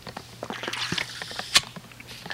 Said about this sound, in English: A big sip you heard and the bang you heard. I got a new drink bottle, my workout bottle, and I just banged it in the microphone and banged it in the cord